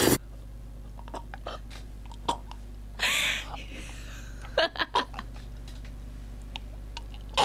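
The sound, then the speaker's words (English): Loud chewing in a jingle: irregular wet smacks and clicks repeating over a steady low hum, with a louder, longer crunching burst partway through. “How did you get that chewing noise? It's just chewing.”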